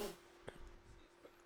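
A short, sharp sneeze bursts out, followed by a quieter breathy catch, against a faint steady hum with no talking.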